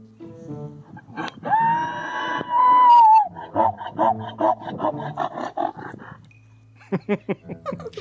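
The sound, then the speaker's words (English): A mule brays: a long, high, horse-like whinny rises and holds, then breaks into a loud run of rhythmic, rasping honks, followed by a few more harsh bursts. “Sound a lot more like horses. They got a little bit of that donkey bray in there, but yeah, they look a lot more like horses as well.”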